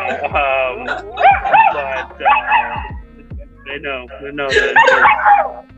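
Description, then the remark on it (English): Two dogs bark and yip repeatedly and fairly loudly, in a steady run of high, excited bursts that fill the whole stretch with only brief pauses between them. “You know, health and happiness for myself and my wife and our two awful dogs that we have, as you hear.”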